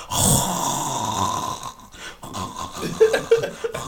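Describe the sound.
A voice imitates an aunt's loud, rasping snoring, with drawn-out rattling inhales followed by snorting, growly bursts, and no words spoken.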